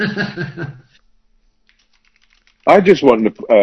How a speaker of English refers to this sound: I was literally just typing it on the live chat on the YouTube thing.